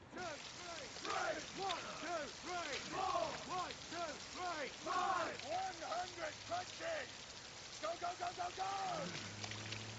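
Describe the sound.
Steady rain hisses throughout, a constant wash of noise under several loud, overlapping voices that shout and chant a count rhythmically during a military drill of punches in a yard.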